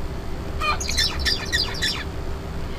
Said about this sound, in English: The bird learns the two transitions necessary for the new song, A, B, and B, A, in a stepwise manner. First, the bird sings. At a later stage, the bird learns one of the transitions, BA, so it can only sing B at the start of the song bout.